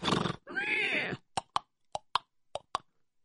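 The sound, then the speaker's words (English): A horse gives a loud, wavering whinny, then hooves clop along in an even clip-clop rhythm, six sharp hollow knocks in pairs, with no talking. “I hear some horses.”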